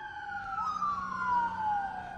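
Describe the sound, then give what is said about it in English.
A police siren wails past, its steady tones sliding downward in pitch as the car goes by, fairly loud over a low rumble of traffic. “How fast do you think that car was going? That cop car?”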